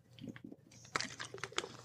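Someone drinks from a plastic water bottle, with several sharp crinkling crackles of the plastic and soft gulping sounds in an uneven rhythm, fairly quiet, with no talking.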